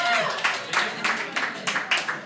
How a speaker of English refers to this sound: Round of applause.